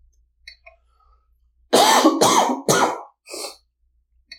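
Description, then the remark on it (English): A loud fit of coughing: three harsh coughs in quick succession, then a shorter, softer fourth after a brief pause, with near silence around them. “I've got through 44 minutes and that was the first time I coughed.”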